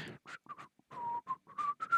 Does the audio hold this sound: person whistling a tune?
yes